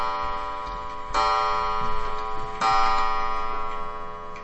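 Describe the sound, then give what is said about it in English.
A clock chimes noon with resonant, bell-like strikes, two loud ones landing about a second and a half apart, each ringing out and overlapping the fading tones before it. No one speaks. “We're going to be done before it chimes again.”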